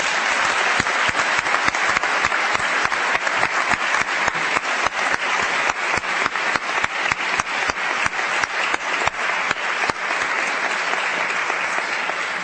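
A crowd applauds all of the prize winners steadily for about twelve seconds, a dense, even wash of many hands clapping with sharp individual claps poking through, sustained at a fairly loud level without fading.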